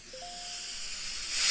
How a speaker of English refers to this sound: Like a TV static sound. I think I actually did that before. I think at one point there was like a television static sound effect.